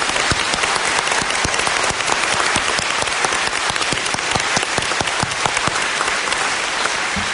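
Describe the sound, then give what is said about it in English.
An audience claps steadily for several seconds, a dense, loud patter of many hands with no voices rising above it. “Please, a round of applause for everyone.”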